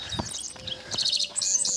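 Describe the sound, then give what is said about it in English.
Several birds chirp and trill at once in open grassland among rolling hills at dawn, bright high-pitched calls overlapping in a busy dawn chorus with a few soft low thumps beneath, no voices present. “There's great waves of hills rising up, and the dawn light is just coming over the horizon. The birds, I mean, it's just crazy.”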